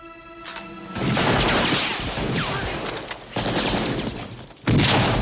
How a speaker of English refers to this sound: And the bad guy's, you know, standard German hand, you know, MP2 machine gun sounds like it's a 50 cal mounted on a tank. Everything is too loud, but it's awesome.